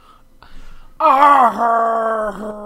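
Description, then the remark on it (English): A person imitates a Godzilla roar with a single long, strained vocal bellow, loud and harmonically rich, starting abruptly and holding a wavering, slightly descending pitch for about a second and a half. “That's like a Jessica Negri roar right there.”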